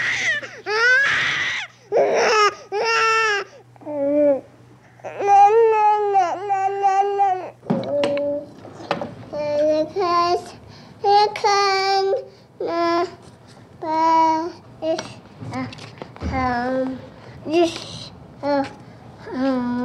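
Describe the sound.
A sped-up recording by radio producer Tony Schwartz of his baby niece from birth to age 12, compressed into 2 minutes 12 seconds: babbling, whimpers and brief cries in quick, high-pitched bursts that shift toward more speech-like vocal sounds, with short gaps between them.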